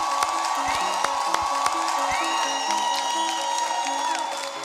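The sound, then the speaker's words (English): A crowd cheers loudly and steadily for Acre Boys and 19 Keys, with high whoops and shouts rising above a dense roar and scattered sharp claps of applause throughout. “Make some noise for Acre Boys with 2 acres of land for 19 Keys.”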